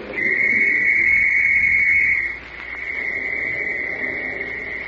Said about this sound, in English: Shrill and sharp, the whistle rings through the valley